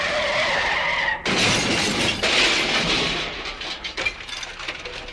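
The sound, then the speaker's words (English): A loud tire skid squeals for about a second before a sudden violent crash as a Hudson car is dropped into reverse, followed by a long burst of shattering, crunching debris as the car wreck settles, with no voices. “So I dropped it in reverse and the car exploded.”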